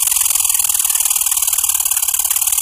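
A squirrel's call recorded at Yellowstone National Park in Wyoming: a rapid, continuous high-pitched chatter with a buzzy, ratchet-like rattle, holding loud and steady with no voices.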